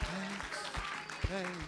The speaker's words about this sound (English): Come on, let's clap our hands again. Let's give a thanksgiving praise.